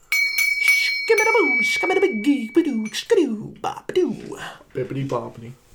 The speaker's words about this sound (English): please ring that bell on your way out, my little lad.